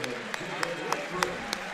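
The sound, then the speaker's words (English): Applause and a partial standing ovation from a crowd at a basketball game for Elijah Hudson, who scored 26 points, with sharp claps landing every third of a second or so over a busy background murmur, and a voice talking over it. “Round of applause. And, yep, Elijah will. Standing ovation from some of the crowd.”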